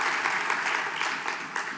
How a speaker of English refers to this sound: Yeah, the Lord should get a clap on that. Glory to the Lord.